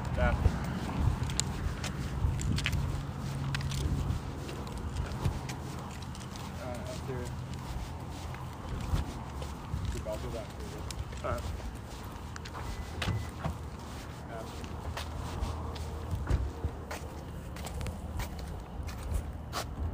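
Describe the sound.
Steady footsteps of people out for a walk crunch along outdoors at a walking pace, with a constant background hum of open air and faint, indistinct voices now and then.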